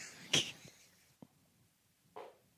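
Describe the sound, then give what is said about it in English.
A short, sharp fart burst near the start, followed by a faint low puff and a softer, breathy trailing sound a couple of seconds later, all quiet and with no talking. “You just farted on our show and it registered on our recording.”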